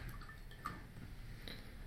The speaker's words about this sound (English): So we're going to give her a stir.